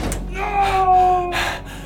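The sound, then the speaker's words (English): An elevator door slides shut with a metallic scraping whine and a heavy thud, followed by a lingering ringing tone, fairly loud, as the elevator heads down to the lowest level. “And watched the elevator door slam shut.”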